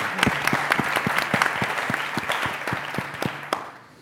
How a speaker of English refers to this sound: Please give a round of applause to our panelists.